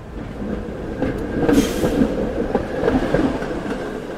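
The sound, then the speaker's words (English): A cable car rumbles along its track with a steady low mechanical drone, irregular clanking and clacking, and a brief hiss of higher-pitched noise midway through. No one speaks. “And another one that we heard were the cable cars.”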